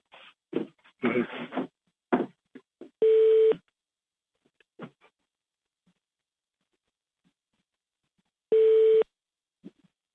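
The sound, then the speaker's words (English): Two steady electronic telephone beeps, each about half a second long, sound several seconds apart on a phone line held on hold, with brief bursts of faint noise and clicks between them. “Somebody's on hold. Do you hear that beeping sound?”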